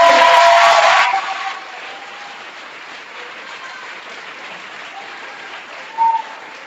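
A burst of audience applause, loud and dense for about a second, then quickly dying away into a low, steady hum of room noise, with a brief faint tone near the end.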